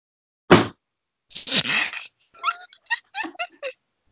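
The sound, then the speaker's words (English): A heavy book of about 570 pages is put down onto a desk with a single dull thud, followed by a short rustle and then a string of high, squeaky yip-like chirps. “So I'm going to see if you can listen to the thud that it makes when I put it down on my desk, all right?”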